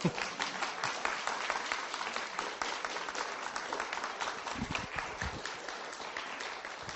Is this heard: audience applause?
yes